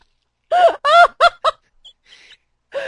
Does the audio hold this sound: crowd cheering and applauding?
no